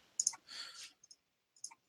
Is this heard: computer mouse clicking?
yes